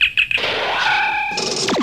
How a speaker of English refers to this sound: Ooh, doorbell. Someone has come to visit me. I will open the door and see who it is.